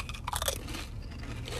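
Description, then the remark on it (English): Crunching of crisp jalapeno-flavored Pringles potato chips being chewed, with a burst of loud, brittle crackles early on that gives way to softer, continuing mastication. No one speaks. “And we apologize for the excessive amount of crunching, but it is Pringles, so you will understand.”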